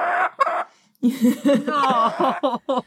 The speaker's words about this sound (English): Oh! Oh, wait a minute, we got a chicken. The chicken has entered the room. We have a chicken.